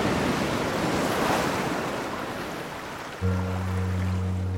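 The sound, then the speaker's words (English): A steady roar of sea surf and gusting wind on a windswept cliff at Granville, by a vast villa overlooking the sea, broad and washing. Near the end, low sustained musical tones come in beneath the windy wash. “Perched on a windswept cliff is a vast villa overlooking the sea.”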